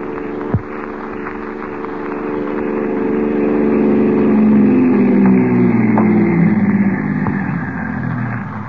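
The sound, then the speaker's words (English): A car rolls up with its engine running, a steady low rumble that swells and drops in pitch as it slows and settles into an idle. A brief knock sounds near the start; no one speaks. “Oh, here's the car.”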